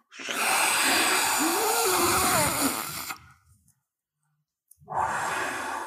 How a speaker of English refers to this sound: Exhale forcefully through the mouth, pursing the lips and making a whoosh sound for 8 seconds.